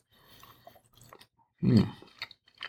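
Crunchy chewing of a piece of Unexpected Cheddar cheese with Parmesan: quiet mouth sounds build to one loud crunching bite, followed by a few softer crunches, with no talking.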